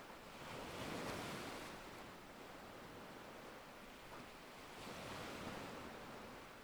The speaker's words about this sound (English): Starkly contrasting with the white foaming waves crashing onto the shore.